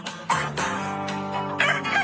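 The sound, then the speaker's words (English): A rooster crows in a long, strained call while chickens cluck and squawk, the sounds loud with sharp bursts of noise around them. “It just says, crimes my chickens committed this week.”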